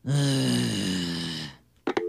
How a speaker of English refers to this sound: Hello? Anybody there? I hear breathing, but I don't hear talking. What's going on here? Hello, mister? Hello, hello!